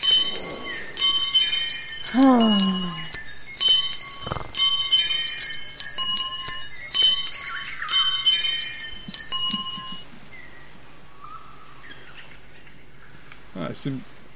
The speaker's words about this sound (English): We're going to just keep playing with these wind chimes. These are really cool. Yeah, they're cool, whatever.